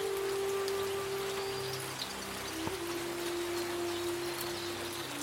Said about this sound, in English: And the rain slowly starts to subside. It's getting less and less. It's wet down to a drizzle now. Then all of a sudden, the rain stops.